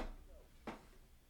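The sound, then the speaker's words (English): A chair gives a brief, faint squeaky creak, one short burst with a rubbery, flatulent edge, heard alone against a quiet background. “It was the chair.”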